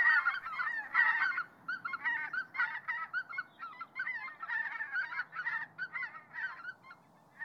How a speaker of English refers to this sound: Isa was probably thinking about white-fronted geese on their migration down from Siberia.